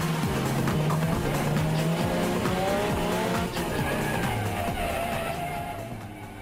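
A race car roars, its engine revving hard and climbing in pitch as it shifts from first into second gear while the tires squeal. Loud and continuous throughout, with no voices.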